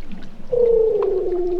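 A sustained, slowly descending tonal call of a Weddell seal rings out underwater, recorded with a hydrophone as a couple of seals call to each other, loud against a faint crackling background, with no talking.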